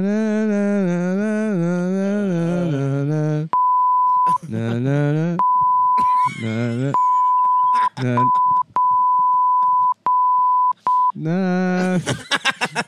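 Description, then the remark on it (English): A steady high-pitched censor bleep cuts in repeatedly over a singing or talking voice, several bleeps of varying length interrupting the vocals, loud. “It only makes sense with the beep.”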